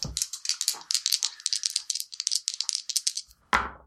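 dice rolling

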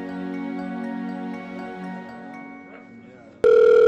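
signal or alarm, telephone line tone

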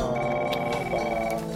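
household object, telephone ringing

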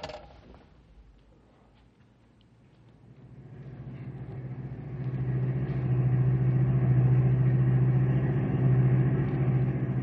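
vehicle, car engine driving

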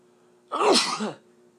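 human body sound, human sneeze

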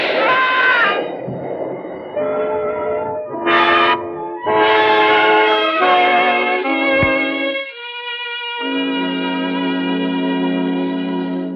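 vehicle, elevated train passing

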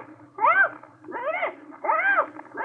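bird, parrot screeching

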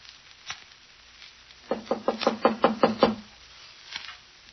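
household object, knocking on a door

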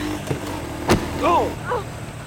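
vehicle, car engine running

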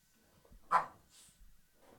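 animal, dogs barking

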